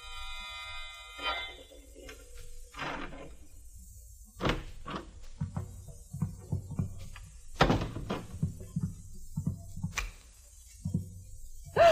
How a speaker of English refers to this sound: The sound of a key in the lock of the door.